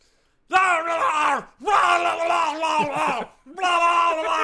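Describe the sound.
A man's voice imitates boxer Floyd Mayweather screaming, incensed at Justin Bieber: three long, loud, strained bursts separated by brief pauses, harsh and bellowing with no other sounds.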